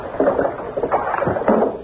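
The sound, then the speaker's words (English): Sea waves wash in through an open window, three rolling swells surging and receding in quick succession, a steady moderate hiss of water with no voices. “The sound of the waves will lull you.”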